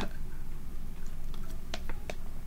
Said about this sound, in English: let me get a little drink of water here, I'm about to choke again.